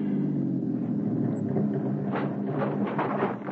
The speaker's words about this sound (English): Keep the engine idling to cover any sounds you might make.